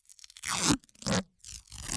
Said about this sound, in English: Smells, sounds, the ripping of masking tape.